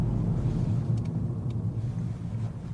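A Toyota GR Yaris drives along with a steady, deep engine rumble and road drone that holds at an even level throughout, with a couple of faint ticks above it and no voices.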